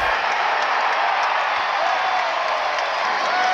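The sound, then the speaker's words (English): Steady roar of a large baseball stadium crowd at a Texas Tech baseball game, captured as field audio: a dense wash of murmuring voices and scattered cheers holding at an even, loud level throughout, with no single voice standing out. “Yeah, that was just from the crowd.”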